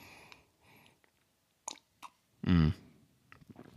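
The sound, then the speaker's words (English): Someone swallowing a mouthful of coffee brewed in an AeroPress: a couple of short wet mouth clicks, then one loud, low, throaty gulp, followed by soft breathing. No one speaks. “It's going down his throat.”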